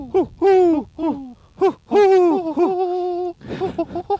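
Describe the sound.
A person's voice mimics a wood pigeon's coo: a loud run of breathy, rising-and-falling hoots in a rhythmic phrase, ending with a quick burst of shorter coos.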